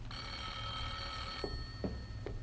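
A telephone bell rings with a sustained, shimmering metallic tone, followed by a few short clicks or taps near the end. It plays alone without voices.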